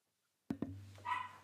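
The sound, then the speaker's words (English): Two quick, sharp dog barks close together, then a higher, drawn-out yelp. The barking is fairly loud, with no voices over it. “Yeah, it's because I'm sorry, the dogs are barking and I'm getting it through the.”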